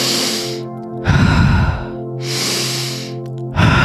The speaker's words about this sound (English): With every inhale, just imagine like this cyclical action is happening. The air is coming in through the nose, circling your body and coming back up and out. In through the nose, all the way down to the feet, up, up, up and out.